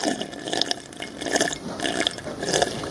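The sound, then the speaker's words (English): Wet gulping as someone chugs water, a steady run of bubbly, splashing swallows and slurps over three seconds, fairly loud and with no talking. “Okay, how about you just chug the water?”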